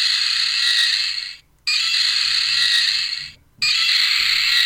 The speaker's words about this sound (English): Can you hear that? I certainly can. It sounded like a little Godzilla roar. That does sound like Godzilla, doesn't it?